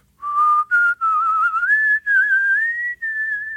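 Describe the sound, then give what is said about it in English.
A clear human whistle, made while exhaling, holds a steady pure tone that slowly rises in pitch, broken into several sustained phrases by brief breaths, with no talking. “So when you're whistling, you can whistle by exhaling. That's probably the most common way of whistling.”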